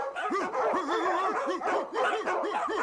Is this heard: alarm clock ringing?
no